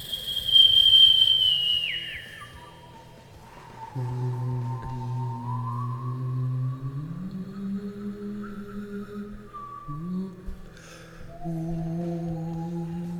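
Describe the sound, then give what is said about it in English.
A person whistles and hums at the same time: a high, sliding whistled note, then a low, buzzy hum while a softer whistle continues above it, both shifting pitch together. Fairly loud, with no talking. “Try whistling and humming at the same time.”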